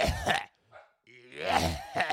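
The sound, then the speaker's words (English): A person imitates a tiny dog's harsh, hacking kennel cough as it coughs up, with a few raspy honking bursts in quick succession, a short pause, then a longer strained hack, fairly loud. “he had kennel cough the last couple days, which is very scary in a tiny little dog like that. He's a coughing up”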